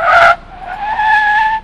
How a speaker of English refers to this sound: Whoa! Did you look at those wheels? A turquoise car with white trim and impressively large back fins was parallel parking outside the diner. The car's vanity license plate read, Blue Eyes.